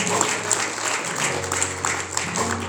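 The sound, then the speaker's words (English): An audience claps together for the Pastor in sustained, dense applause, with a low steady hum underneath and occasional louder claps standing out from the crowd. “So I would like to give Pastor another hand clap for that because that helped me.”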